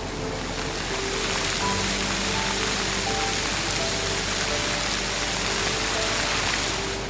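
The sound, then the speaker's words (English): Steady, dense rush of falling water from the Fountain of Wealth, a large fountain with an inward flow, splashing continuously into a pool, with a faint low hum of the surroundings underneath and no voices. “You've been hearing water fountains. Here is the Fountain of Wealth, postcode 038983.”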